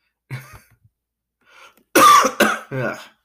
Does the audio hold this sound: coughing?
yes